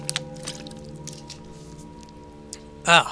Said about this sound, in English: give me a sec here. Need some water.